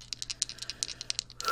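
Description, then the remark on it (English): Two twenty-sided dice rattle and clatter across a table in a quick, irregular burst of sharp little clicks, fairly quiet, with no one talking over them, rolled with advantage in a tabletop roleplaying game and landing a 20 and a 1. “come on, dice. Don't fail me now. That, my friends, is a nat 20.”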